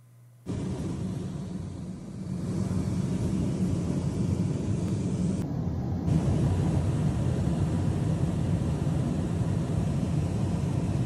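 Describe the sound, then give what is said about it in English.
Loud, steady roar of wind rushing through a massive hole in the side of the cabin of Alaska Airlines Flight 1282, after a portion of the fuselage exploded, before an emergency landing. It kicks in abruptly after a brief quiet moment and holds a constant, dense rumble with no voices. “Alaska Airlines Flight 1282 was forced to make an emergency landing after a portion of the fuselage exploded last Friday, leaving a huge chunk of the plane missing.”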